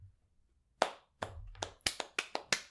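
Several sharp hand claps ring out close by, starting slow and then picking up into a quicker, uneven burst of about seven claps with no talking.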